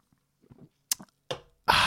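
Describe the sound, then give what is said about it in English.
A drink of Courvoisier cognac being sipped: faint wet mouth sounds and soft slurps, a sharp click like glass touching, another brief swallow-like noise, then a loud, breathy exhale to finish. No talking. “I've only read through it once, so let me take a sip of my Courvoisier.”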